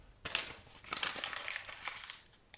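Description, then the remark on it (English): A crude paper drawing of Krampus being crumpled up, a dense run of crackling crinkles with sharper snaps throughout, lasting a couple of seconds with no voices. “Then, to drive his point home, he withdrew the crude drawing of Krampus they had given him earlier in the day and crumpled it up in front of their noses.”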